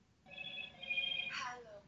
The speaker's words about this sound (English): Hello, Moto. Oh, sorry. What is that? It's my phone restarting because I haven't actually had it around Wi-Fi, so it's restarting with the I think it might be an operating system, perhaps.